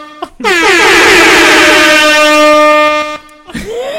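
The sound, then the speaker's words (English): An air horn sound effect: a loud, sustained blast lasting nearly three seconds, with a brassy, buzzing tone whose harmonics waver at the onset before holding steady, then cutting off abruptly. “Let me get the horn out for that shit, dog.”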